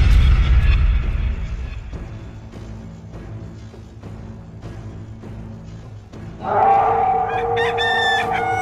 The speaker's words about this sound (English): The lone rooster began to squawk